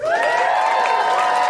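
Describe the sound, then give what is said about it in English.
A small live crowd of about twelve and a half people at the Nerdmelt cheers and whoops loudly, high voices blending into a sustained, steady roar of enthusiasm with no speech over it. “It's amazing how much noise 12 and a half people can make.”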